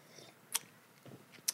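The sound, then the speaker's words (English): A quiet gulp of a drink during a toast, with two sharp wet mouth clicks about a second apart and a soft swallowing sound between them. No one speaks. “I feel like they heard my gulp on that, bro.”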